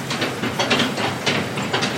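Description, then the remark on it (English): Steady industrial machinery ambience from the Alpine Waste and Recycling sorting facility in North Denver, where recyclables are sorted: a dense, hissing mechanical roar with rhythmic clattering surges every half second or so, fairly loud, with no voices. “They collect, sort, and ship recyclables from all over the state.”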